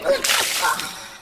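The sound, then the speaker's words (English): A water balloon drops onto someone's foot and bursts: a sudden sharp smack followed by a loud hissing splash of water that trails off over about a second. No one speaks. “I dropped it on my foot. And now I have wet socks.”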